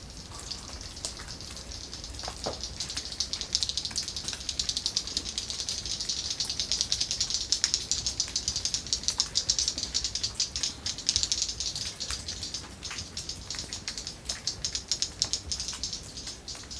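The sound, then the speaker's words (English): Dense, rapid clicking from swifts flying past deep inside a cave, a steady crackling rattle of sharp echolocation clicks over a bright, hissy background, holding at a fairly even level throughout with no voices. “and my guide then went further into the cave and got the birds to fly past me.”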